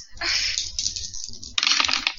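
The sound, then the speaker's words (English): Two bursts of percentile dice rattling and clattering across a hard tabletop, one early and one about a second later, fairly loud with no talking over them. “I swear to God, this is the most I've used percentile dice ever.”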